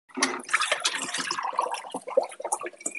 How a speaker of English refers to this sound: Somebody's doing the dishes over here. That'd be me. That's why I've been turning my microphone on and off.